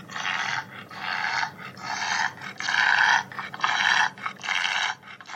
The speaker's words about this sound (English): For example, here is a clip of a bulldog trying to breathe.